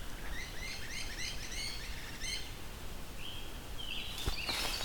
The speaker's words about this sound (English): We've got, I think those are kingbirds making that sound. Not sure though. Oh no, great crested flycatchers. That's what makes that sound. Kind of a sound you don't hear often. You have to encounter a couple of them.